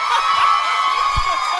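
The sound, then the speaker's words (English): A large audience cheers and whoops loudly, their dense, steady roar of noise sustained throughout, with scattered shouts rising above the crowd. “Don't applaud that so much. You'll applaud it more!”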